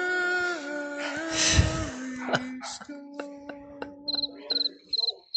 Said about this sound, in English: The crickets were for Barry. No, the crickets are for you, my friend. It's labeled. It says crickets, Mr. J, right on this jingle palette.